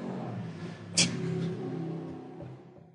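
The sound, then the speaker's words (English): A car engine rumbles steadily as a car approaches, low and throaty, with a brief sharp click early on before the sound eases slightly toward the end. “Car coming.”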